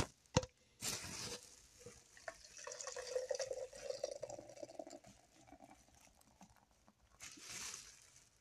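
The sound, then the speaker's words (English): Someone drinking a beverage: a sharp click and a splashy burst, then several seconds of liquid gurgling with a slowly shifting pitch, ending in a soft fizzy rush. No one speaks. “Gotta stay motherfucking hydrated, you know what I mean?”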